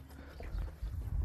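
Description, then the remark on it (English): Hooves of an older gelding horse, about 13 to 14 years old, being ridden, clip-clop at a slow walk, a few muffled thuds over a low, rumbling background, not loud. “my buddy Joe's horse, and his name is Bingo. And he's an older horse.”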